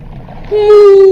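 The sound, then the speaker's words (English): A voice, as Dory speaking whale to a whale, imitates whale speech with a single long, drawn-out moaning note. The sound is low, loud and steady, dipping slightly in pitch. It begins after a moment of faint murmuring and holds to the end. “Dory, are you sure you speak whale?”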